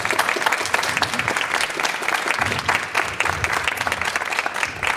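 A crowd applauds steadily for the full five seconds, a dense, loud wash of many hands clapping with no pauses, and only faint traces of voices beneath it.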